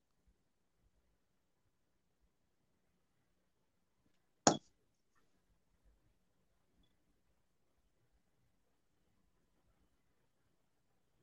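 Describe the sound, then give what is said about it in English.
A single short, sharp chirp from a smoke detector cuts through near silence, one bright high-pitched blip midway through with nothing else around it. “Yes, it's a smoke detector. It's there. I can't do nothing about it.”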